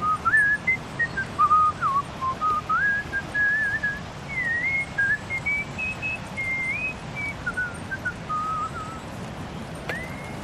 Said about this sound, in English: They whistled, like this man recorded in a park.